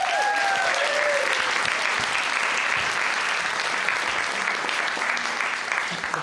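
Loud, steady applause from an audience, a dense wash of many hands clapping that holds for about six seconds, with a few brief whoops rising above it near the start.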